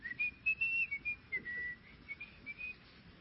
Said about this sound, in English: And I'm whistling on my way, like I'm going on a fishing trip. And I'm whistling on my way to practice, and I'm walking up, and there's this new coach.